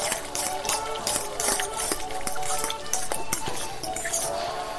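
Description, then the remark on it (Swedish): Wet, squelchy tossing of thinly sliced raw vegetables with lemon, olive oil and salt inside a bowl, with irregular clinks and slippery squishes repeating steadily for several seconds, moderately loud and without talk. “Du, vilket härligt ljud det var när du gojsade runt dem där.”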